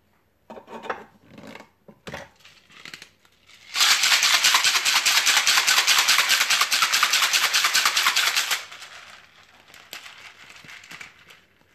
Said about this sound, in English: Finally, I'll give it a shake with ice until chilled.